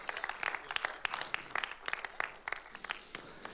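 A crowd applauds, many hands clapping in a dense, uneven patter of sharp bright claps that holds steady for a few seconds with no voices over it.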